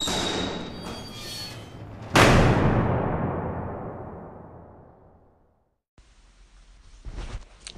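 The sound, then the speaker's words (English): A portentous dungeon door sound effect: a low, grinding rumble builds before a massive door slams shut with a booming thud, its echo slowly dying away into silence; a faint hissing rumble then follows. “Cue portentous dungeon door.”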